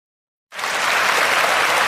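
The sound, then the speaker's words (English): After a brief silence, a burst of applause for Serena Williams begins and continues steadily as a dense, even wash of many hands clapping, fairly loud, with no talking. “I'm applauding for Serena because she stood up for herself at the U.S. Open.”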